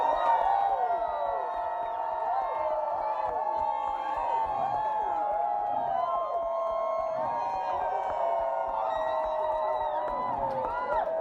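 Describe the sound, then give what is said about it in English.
A crowd cheers and whoops loudly and steadily for about eleven seconds, with many overlapping high-pitched shouts and yells rising and falling over a dense wash of voices. “Everybody make some noise for …!”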